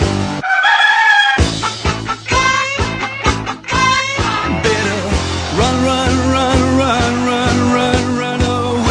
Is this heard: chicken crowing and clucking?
yes